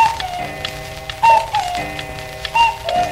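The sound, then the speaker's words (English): A cuckoo clock call sounds its two-note whistled hoot a few times in quick succession, ringing out clearly above a dense, steady clatter of ticking and rattling. “And a cuckoo.”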